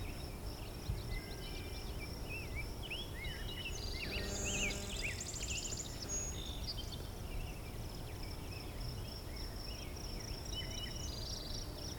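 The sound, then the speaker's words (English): Several birds sing over a steady low rumble: a song sparrow's varied trills, a blue-winged warbler's high buzzy notes, and a rose-breasted grosbeak's warbled phrases, overlapping through the whole stretch. “But yeah, it's got the core three that are singing here. Song sparrow, blue-wing warbler, and rose-breast grosbeak.”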